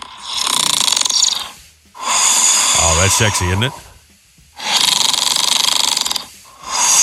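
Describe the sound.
A man snores heavily in his sleep: long, loud, rasping breaths, three full snores with short quiet gaps and a fourth beginning. A voice speaks briefly over the middle snore.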